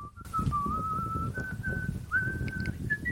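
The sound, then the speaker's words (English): A single steady AI-generated whistled tune, made from a prompt for whistling with wind blowing, sliding gently between held notes, over a continuous low rumbling wind-like noise throughout. “This is whistling with wind blowing was the prompt.”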